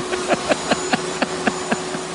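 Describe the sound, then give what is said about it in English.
A vacuum cleaner, run by a husband, goes with a steady whirring drone and a constant motor hum, overlaid by quick rhythmic swishing pulses, roughly four or five per second. No one speaks. “Your husband loves the vacuum.”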